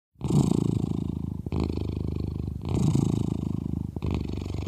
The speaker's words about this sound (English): You can hear for yourself. Here's the cat purr.